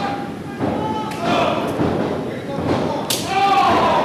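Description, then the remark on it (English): Sharp, loud open-hand chest chops in a wrestling match crack out several times at irregular intervals over a noisy crowd and voices, the last one near the end the loudest and brightest. “Oh, good chops. You hear them.”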